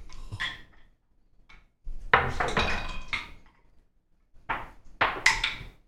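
Several dice, rolled for initiative in a game, clatter and bounce across a hard surface in separate bursts of sharp, bright clicks and rattles, with short pauses between rolls and no talking.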